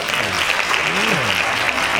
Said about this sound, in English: Hand claps.